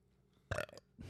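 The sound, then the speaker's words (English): A short, weak burp lasting about half a second, moderately loud, followed by a brief breathy noise; no talking. “A weak burp.”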